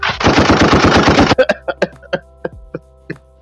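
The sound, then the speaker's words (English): A gunshot salute sound effect: a loud, rapid burst of automatic gunfire rattles for over a second, then gives way to a handful of separate, echoing single shots spaced irregularly, with a steady low hum underneath. “Gunshot salute.”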